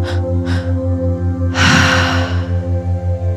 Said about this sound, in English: And when you're ready, moving into the breath pattern, the triactive.